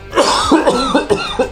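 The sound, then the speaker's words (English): A person coughs several times in quick succession, a voiced string of short rasping bursts with a throaty edge, with no talking around it. “So the first thing we will do is I'm going to do a little cough.”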